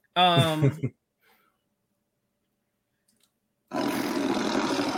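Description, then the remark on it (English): A big cat roars in two loud bursts: first a short, tonal, throaty cry, then after a few seconds of silence a longer, rough, rasping roar that continues steadily. “That don't sound like a pretty kitty to me.”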